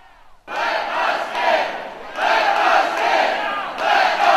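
A large crowd of protesters against Senate Bill 5, which would eliminate collective bargaining for state workers, chants and shouts in loud, rhythmic surges, voices massed together, filling the space after a brief quiet start.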